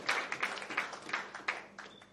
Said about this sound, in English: Clap your hands with a clap offering in church. What a joy.